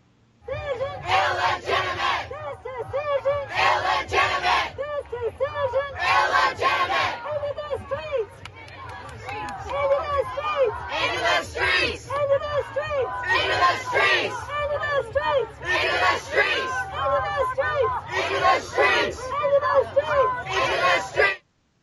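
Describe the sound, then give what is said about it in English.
A protest crowd outside the US Supreme Court, after the Roe v. Wade decision, shouts and chants in loud, rhythmic bursts, roughly every couple of seconds, over a steady low rumble of voices and hubbub that never lets up. “Wade was released last Friday, AOC joined a protest outside the Supreme Court where she shouted down the court's ruling as illegitimate.”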